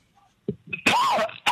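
A recorded cough played from a sound-effect button: a short run of harsh, raspy coughs, a couple of small hacks building into one long, loud, throaty cough, then another burst starting at the end. Clear with no talking.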